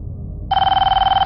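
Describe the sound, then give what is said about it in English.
A telephone bell starts ringing abruptly partway through and keeps ringing unanswered, a loud, rapid trilling ring with a steady electronic warble, heard alone over a faint low background hum. “But the phone rings and rings, and Jordan doesn't pick up.”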